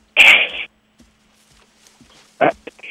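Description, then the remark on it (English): A sharp sneeze bursts out at the start, followed by near silence and then a short, loud vocal outburst. “Did I give you permission to sneeze”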